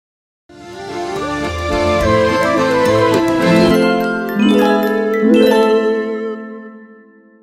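Closing theme music: a bright, chiming instrumental melody with bell-like, ringing tones and sustained notes, starting after a brief pause and playing fairly loudly with no voices.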